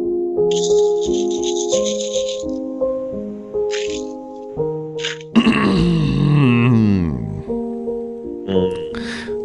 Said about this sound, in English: I heard him laugh a couple times because I was playing like fart sound effects.